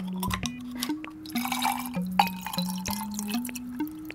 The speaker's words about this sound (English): Gin first, Saint-Germain, and then some tonic water.